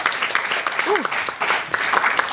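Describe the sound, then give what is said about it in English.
Steady, dense applause from an audience for a film just screened, continuing throughout, with a short whoop rising over the clapping partway through. “Another round of applause for that beautiful film that we just saw.”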